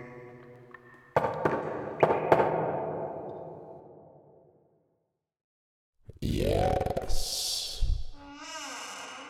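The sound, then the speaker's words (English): A secret knock on a door: a short pattern of sharp knocks, one single then a quick pair, each ringing out with a long resonant tail. After a pause, a loud, swelling, whooshing sound with sweeping tones follows. “You must know the secret knock. Is it this one?”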